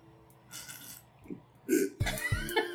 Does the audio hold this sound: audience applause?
no